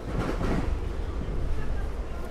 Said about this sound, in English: The train has been accelerating rapidly. We appear to be going at about 50 miles an hour now.